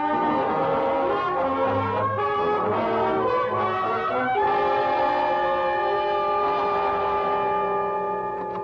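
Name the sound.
train horn blowing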